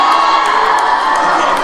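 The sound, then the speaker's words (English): A crowd of campus students cheers and whoops loudly and steadily during a lesson, a dense wall of shouting with no pauses throughout. “Now, I heard the campus students can bring some hype into a lesson, and sometimes...”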